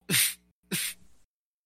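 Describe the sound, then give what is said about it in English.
Two quick, loud sneezes, each a sharp breathy burst, the second trailing off a little longer, with silence around them and no talking. “White people love saying bless you in different languages.”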